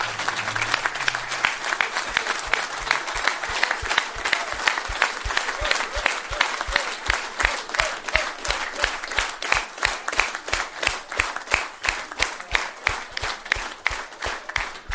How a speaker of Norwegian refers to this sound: Så jeg ønsker at alle på Holberg og alle frivillige som har hjulpet oss kan reise en tur. Og gi dem en applaus da, samtidig da. En kjempeapplaus.